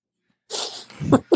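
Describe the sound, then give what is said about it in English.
A sneeze that sounds like a dog sneezing: a breathy hiss followed by a sharp, snorting burst and a quick second snort, fairly loud with no talking. “Why did it sound like there was a dog sneezing into the podcast?”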